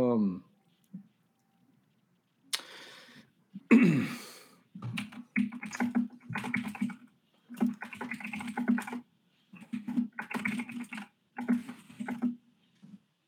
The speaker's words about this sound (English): Are you still typing? No. I was hearing all of your typing because I'm sure you're going on for three lines of something that was a story from your junior high school days.